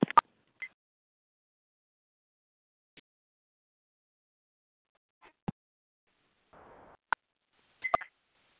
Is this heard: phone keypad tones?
yes